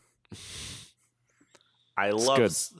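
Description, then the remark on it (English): A person mimics snoring with a raspy, snorting inhale, a brief pause, then a loud, wavering voiced exhale ending in a breathy hiss. “I'm so sleepy. In space, no one can hear you snore.”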